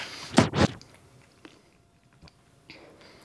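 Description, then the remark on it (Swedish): Someone chews a Bertie Bott's Every Flavour Beans jelly bean: two loud, quick squishy bites, then a few faint, scattered mouth smacks as the chewing quiets down. No one speaks. “Ska man liksom tugga på den här? Ja, det är klart man ska.”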